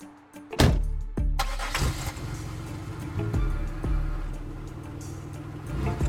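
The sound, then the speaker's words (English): A car engine cranks and catches with a sudden burst, then settles into a steady, rumbling idle that hums on, with no voices. “We get in the car and get out of there.”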